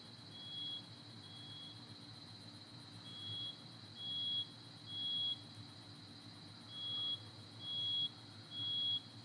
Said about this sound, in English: So this neighbor's smoke alarm is really driving me nuts.